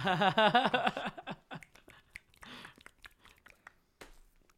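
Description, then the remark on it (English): A brief burst of laughter gives way to a quick, irregular run of sharp, dry finger clicks made very close to the microphone, crisp and loud at first, then sparser and softer. “Just trying to make clicking noises with my fingers. Just do it. Right in front of the mic.”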